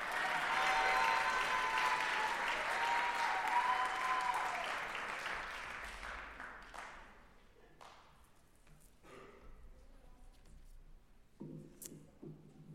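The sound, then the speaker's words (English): An audience at Northwestern claps loudly and steadily for several seconds to congratulate an honoree, then the applause thins out into scattered, fading claps and a few soft thumps. “You can clap again.”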